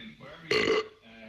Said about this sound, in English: That was a deep burp. You can kind of tell by the noise whether they're going to smell bad as well.